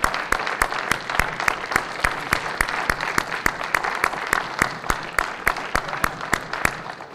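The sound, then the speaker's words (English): An audience applauds mothers steadily for several seconds, a dense wash of clapping with sharper, evenly spaced claps punching through in a regular rhythm. “Come on, I know you all are in a sleepy mood today, but can we give these moms a round of applause?”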